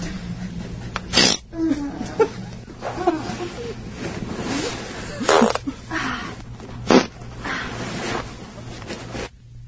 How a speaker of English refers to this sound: No, all right, here's a fart number.